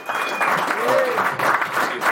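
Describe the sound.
A crowd gives a round of applause: dense, steady clapping at a fairly loud level throughout, with a brief rising and falling whoop or whistle and scattered voices mixed in.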